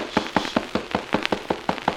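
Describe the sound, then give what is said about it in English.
A rapid, steady run of about eleven sharp knocks on a door, each a crisp, fairly loud rap evenly spaced with no voices in between. “Who is that knocking?”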